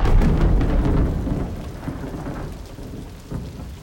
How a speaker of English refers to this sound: Well, imagine you've been driving for 2 hours through a blinding downpour.